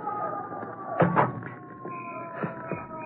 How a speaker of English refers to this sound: Here we are. Slam that trap door shut.